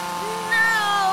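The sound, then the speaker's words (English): A neighbor's leaf blower's motor whines steadily with a droning, harmonic hum that swells louder about halfway through and stays continuous to the end. “It's my awful neighbor McDougal. Damn him and his leaf blower.”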